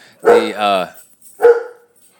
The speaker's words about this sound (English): Oh my God, these dogs.